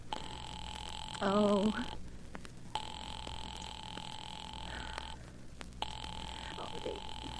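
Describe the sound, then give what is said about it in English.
A steady telephone ring tone sounds through a handset as a call is placed to the police department, two long rings separated by brief pauses, with a short vocal noise near the start. “I'll call the police.”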